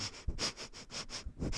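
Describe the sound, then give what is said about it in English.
A person imitates a dog's eager sniffing: a quick, steady run of about seven breathy snorts through the nose, fairly loud, with no talking. “by the end of the day, it's no longer like a little sniff; it's just a big.”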